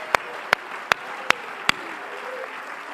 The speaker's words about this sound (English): Come on, clap your hands unto the Lord. Come on, clap your hands unto the Lord.